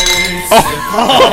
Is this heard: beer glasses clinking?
yes